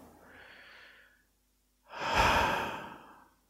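Slow human breathing into the stomach during a relaxation exercise: a soft, airy inhale, a brief pause, then a longer and louder breathy exhale. No one speaks.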